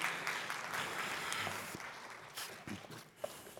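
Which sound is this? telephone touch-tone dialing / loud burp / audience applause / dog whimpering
audience applause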